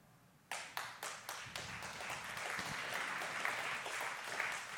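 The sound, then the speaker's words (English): Audience applause starts with a few sharp, separate claps that quickly swell into steady, dense clapping from a crowd, holding at a fairly loud, even level to the end. “I don't say that for your applause.”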